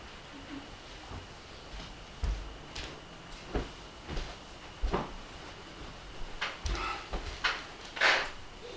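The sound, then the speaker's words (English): A chair being shifted into place: a series of short scrapes, bumps and wooden knocks at irregular intervals, quiet, with a brief louder scrape near the end and no talking. “It's a chair. Do you need a chair? Give a chair from there.”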